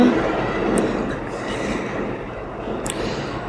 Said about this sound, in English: That'll be the train. It's just gone past.